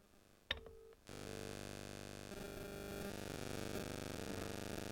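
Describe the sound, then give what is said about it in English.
A short touch-tone beep from a phone being dialed to call someone, followed by a loud, steady, buzzing line tone that drones on without a break; the call goes unanswered. No one speaks. “So let's phone”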